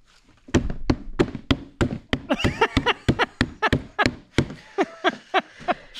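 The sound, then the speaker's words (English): Someone bangs on a trash can in a steady, rapid run of about twenty loud, sharp hollow whacks, with faint voices rising briefly between the hits midway through. “That, for anyone listening, by the way, I picked up a trash can. Yeah. And started banging on it.”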